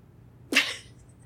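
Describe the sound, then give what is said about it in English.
A single sharp, breathy yelp from a human voice imitating a prairie dog's jump-yip, fairly loud, ending in a brief airy tail before quiet returns. “What does a jump yip sound like”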